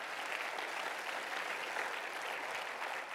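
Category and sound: crowd, audience hand clapping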